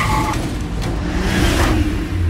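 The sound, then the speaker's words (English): A car engine rumbles loudly and steadily, with a low throaty growl and a brief rising rush as it seems to rev and pick up speed. “Stop a moving car?”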